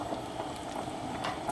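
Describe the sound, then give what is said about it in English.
Pasta cooking water bubbling steadily in a saucepan, a continuous low simmer with small pops and crackles scattered through it. No one speaks. “add a little bit of the cooking water in”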